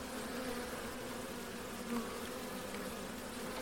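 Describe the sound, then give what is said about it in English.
Dense, steady buzzing of many honeybees over an open hive as a caged queen bee is placed on top of the frames, a continuous droning hum with a slight swell near the middle and no voices. “I'm just going to put her at the top of the hive, and I'm just going to see what they do.”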